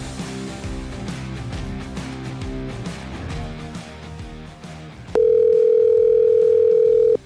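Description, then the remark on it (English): Music plays for about five seconds, then a loud, steady ringback tone from an outgoing phone call to a guest sounds once for roughly two seconds before cutting off. “Phone ringing.”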